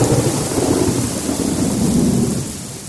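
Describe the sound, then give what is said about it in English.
A thunderstorm with a torrential downpour: heavy rain pours steadily while deep, rolling thunder rumbles underneath, loud throughout, easing only slightly toward the end. “Soon thereafter, the CEO was out for store visits around to his new company, and he arrived at one store just as a torrential downpour was unleashed.”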